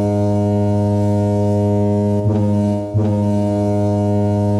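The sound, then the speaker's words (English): A gentle, sustained horn tone, suggested as a gentler car horn, drones steadily at a low, rich pitch for the whole stretch, wavering briefly twice midway before settling back into the same even blare. “Some people think this should be a horn.”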